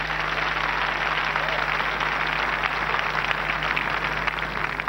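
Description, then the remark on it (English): Steady, loud applause from a crowd clapping for Jesus, a dense crackle of many hands clapping without pause for the full stretch, with a low electrical hum running underneath and no one talking. “Let's clap for Jesus.”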